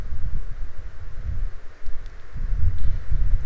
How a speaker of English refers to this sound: But I think it's very windy today, so I'm using a little wind blocking technique by facing the mic away from the wind. Facing in the direction that the wind is blowing, so it's not blowing straight into it.